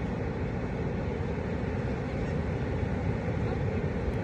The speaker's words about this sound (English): You hear the ocean? That's beautiful.